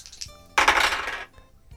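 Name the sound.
dice being rolled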